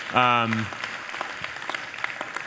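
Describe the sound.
A church audience applauds the volunteers who served in community service projects, with steady, scattered clapping at a moderate level, opening with a brief voiced call or cheer over the first half-second.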